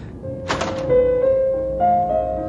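The door of a rec room on a deck is opened with a sharp thunk of the latch, followed by a steady humming, whining tone that rises slightly in pitch as the door swings. No one speaks.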